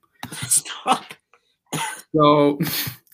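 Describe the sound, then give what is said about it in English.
A person coughs and clears their throat in a few rough, breathy bursts, with a brief pause in between and a strained, voiced rasp near the end. “So now you're making me cough.”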